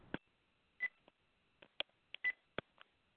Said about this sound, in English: And my phone's beeping on me. Let me switch phones here real quick.